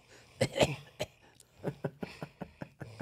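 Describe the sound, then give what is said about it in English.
A run of sharp coughs: a heavier double cough at first, then several shorter hacking bursts at uneven intervals, with no talking. “I'm the one that coughs.”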